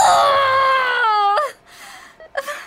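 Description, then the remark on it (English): A woman in labor in a hospital room, attended by a doctor and nurses, lets out a long, strained scream of agony, loud for over a second, then breaks off into ragged gasping breaths. “… is in labor, surrounded by a doctor and nurses. She screams in utter agony.”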